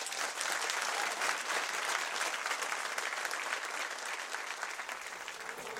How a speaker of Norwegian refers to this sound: Men nå, en stor applaus til kveldens gjest